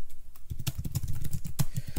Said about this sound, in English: Probably hear my aggressive type. I type like a gay We person. do hear your aggressive typing. I feel like gay people like to type aggressively.